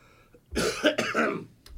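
A person coughs twice in quick succession, fairly loud, with raspy, throaty bursts and no talking around them.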